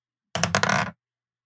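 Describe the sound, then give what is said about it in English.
A quick burst of dice clattering and tumbling across a hard tabletop, fairly loud, lasting just over half a second before stopping abruptly. No voices. The dice are rolled for a strength check. “I want you to roll a strength check to see if you can hold on.”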